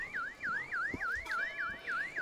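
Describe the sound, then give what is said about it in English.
A car alarm wails in a fast, steady cycle of rising and falling electronic whoops, about seven repeats, fairly loud, with some faint background noise and no voices. “Beep, beep, beep.”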